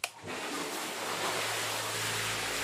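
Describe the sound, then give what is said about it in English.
A steady, loud rush of churning water in a filled hot tub with the whirlpool motor's low hum running beneath it, starting abruptly as the motor is turned on and continuing unbroken. “I filled the tub, then turned on the motor.”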